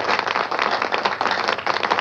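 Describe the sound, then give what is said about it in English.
A crowd applauds steadily, dense overlapping claps forming a loud, continuous wash of clapping with no voices, edited in like a canned applause track. “And I'm gonna edit in some clapping there too, so it sounds very extravagant.”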